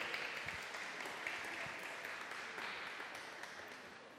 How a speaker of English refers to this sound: Should we give her a round of applause for being so brave?